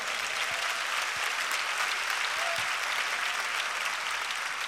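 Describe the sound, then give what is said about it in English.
An audience claps their hands in a dense, sustained wash of applause, steady and fairly loud throughout, with no individual claps standing out and no talking over it. “Come on, clap your hands.”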